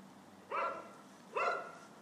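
A dog named Louis barks twice during dog training, two short, sharp barks spaced almost a second apart, moderately loud against a quiet background with no one talking.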